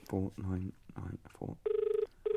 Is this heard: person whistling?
no